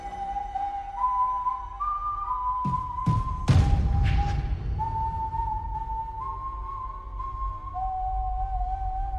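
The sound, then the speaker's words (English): A character's slow, eerie whistle in an animated film, a melody of long sustained notes stepping between pitches, played over a low rumbling drone, with a few sharp percussive hits midway. “And then he's got that just really dope whistle.”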